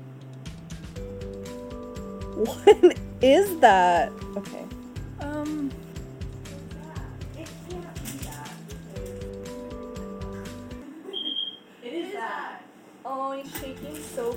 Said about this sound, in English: And then we find it, and there's an alarm going off in your house.